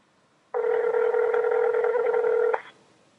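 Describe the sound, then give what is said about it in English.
A single steady electronic telephone tone of an outgoing phone call holds for about two seconds and then cuts off abruptly, like a ringback or dial tone. It is clear and fairly loud, with no voices. “So this is her phone call to Danny.”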